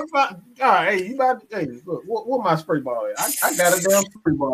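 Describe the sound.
A man talks animatedly, then a loud, sharp hiss like a can of Raid insecticide spray bursts out for under a second, seemingly made with the mouth, before the talking resumes.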